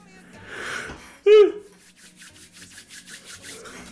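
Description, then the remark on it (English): A short, loud voiced yawn from someone who has just eaten dinner, its pitch sliding downward, set between soft rustling, then followed by a steady run of rhythmic rubbing or scraping strokes. “Sorry, I just ate dinner. That's why I yawned.”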